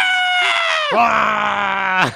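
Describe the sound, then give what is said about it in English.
Several voices let out a loud, drawn-out scream together, pitches sliding downward and then holding steady before cutting off, an exaggerated, theatrical group cry lasting about two seconds. “Everyone screams.”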